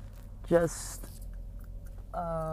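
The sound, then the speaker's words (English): A wet mouth sound of gum being chewed while driving, a brief smacking burst near a voice, with short voiced sounds before and after and a quiet background hum. “Sorry, I'm chewing gum.”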